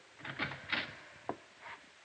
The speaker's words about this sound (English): I tapped on the door, and the jail matron let me in.